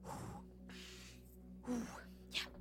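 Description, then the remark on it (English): A voice imitates out-of-breath panting, as of characters coming panting up from behind: a few heavy, breathy gasps and exhales in an uneven rhythm, moderately loud, with no words spoken. “Then Fred and Elspeth sort of come panting up behind you.”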